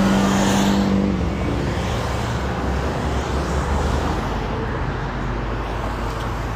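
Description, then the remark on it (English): Loud, steady roar of heavy traffic, with motorcycles and a big truck rumbling past, an engine drone standing out at first before blending into continuous road noise. “And there's motorcycles behind them. It's my parade.”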